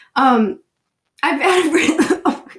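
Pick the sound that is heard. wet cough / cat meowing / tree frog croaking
wet cough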